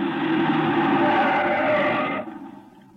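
A car brakes hard with a loud, sustained tire squeal and engine rumble, then abruptly comes to a stop, leaving a quieter idle. No voices are heard.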